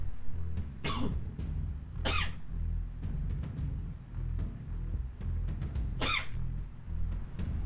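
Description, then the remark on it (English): Three sudden, explosive sneezes burst out at uneven intervals over a steady low background hum, each a sharp breathy blast that quickly fades. “Some would argue that sneezes just randomly sneak up on you, as you just heard.”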